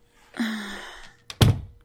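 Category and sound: household object, door closing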